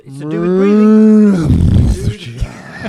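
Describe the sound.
A person imitates a cow with one long, loud, drawn-out moo lasting over a second, then breaks into a burst of breathy laughter and rough vocal noise.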